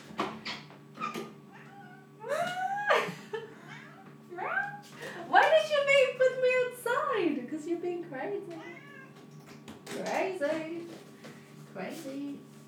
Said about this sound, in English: So now our cat's back in the room. Yeah, no, he was like meowing way too much.